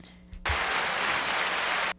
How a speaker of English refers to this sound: Can I do the clapping? Is this the clapping? Yay!